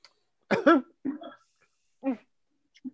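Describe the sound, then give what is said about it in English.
A woman gives a short, affected-sounding cough: a sharp double burst, then a couple of softer throaty coughs spaced apart, with quiet gaps between and no talking. “That fucking cough she did, yo.”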